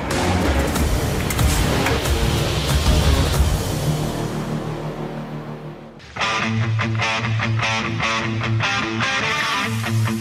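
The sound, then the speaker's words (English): A pre-production truck with Multimatic GSSV shocks and skid protection drives hard off-road, a loud rumble of engine and churning terrain for several seconds, then it cuts abruptly to rhythmic, tonal music. “We just inspired this pre-production truck you see behind me. Let's go see what it'll do.”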